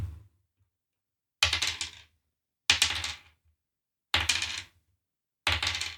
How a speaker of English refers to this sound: Roll 4d6 for me.